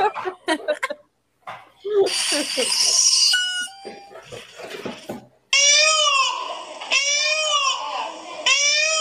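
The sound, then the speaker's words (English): After brief talking and a burst of noise, a recording of a real peacock is played. The peacock cries out loudly three times in a row: high, piercing, nasal wails that rise and fall, each about a second long. “Okay, I'll play you the real one, and then we can judge how accurate it was.”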